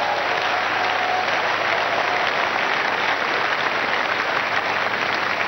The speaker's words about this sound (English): Are you ready to allow your spirit to be free? Clap for Jesus Christ.